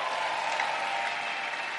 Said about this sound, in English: And we're also celebrating 27 years in ministry today. So it's a celebration day. I thought you would clap more than that.